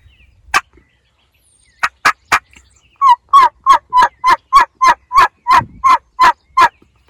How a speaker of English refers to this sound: And I'd do that, and you could see him gobble. And his gobble was just rasp. It was a bah! He didn't have that sharp or that, you know, and immature gobbles will have that.